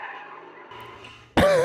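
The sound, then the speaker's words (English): A steady rumble of road noise gives way to a sudden, loud burst of screeching near the end, tires squealing as a car spins off, harsh. “And then she spin off.”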